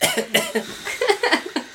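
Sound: asthmatic cough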